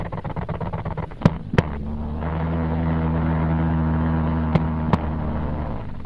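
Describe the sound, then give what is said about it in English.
Jumping spider vibration signals on a nylon surface, a pantyhose: a low, steady droning hum with harmonic bands, starting with rapid ticking pulses, broken by a few sharp clicks and snaps. No voices. “The surface that you heard it vibrating was actually on a nylon surface, actually a pantyhose.”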